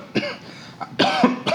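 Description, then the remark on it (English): Several harsh coughs in quick succession, the middle burst longest and loudest, with short pauses between them and no talking. “But you get higher when you cough.”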